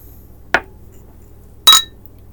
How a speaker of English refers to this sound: Horrible. That was a terrible clink. We'll clink better on the beers.